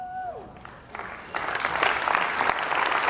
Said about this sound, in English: Woo! Don't clap for me.